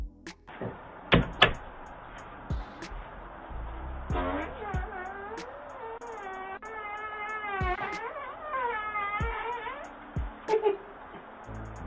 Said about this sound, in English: Like, suppose you go back and you review your camera and you're happy to see and hear this man passing gas outside your door. What would you do?